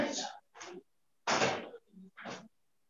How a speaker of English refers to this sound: Let me first close this door because the light is so much.